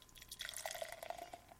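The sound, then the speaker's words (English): A light straw-colored Rogue beer is poured into a glass, forming an off-white foamy head with lots of tiny bubbles: a soft, steady trickle of liquid with gurgling, bubbly texture over a couple of seconds, fairly quiet, with no talking. “And the pour.”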